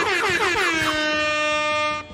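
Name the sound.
air horn blasts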